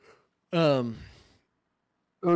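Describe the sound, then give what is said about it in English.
A big, drawn-out yawn: a loud voiced groan that slides downward and trails off into a breathy exhale, followed by a brief vocal sound at the end. “I had a yawn so bad, and I just like kept pausing to be like, all right, swallow the yawn.”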